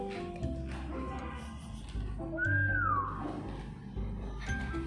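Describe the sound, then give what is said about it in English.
A single short whistle attempt through pursed lips, a thin tone that wavers and slides downward for under a second, heard over soft background music with no talking. “You make an own shape with your mouth and...”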